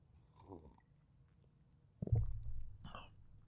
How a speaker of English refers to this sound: as I get a sip of my coffee.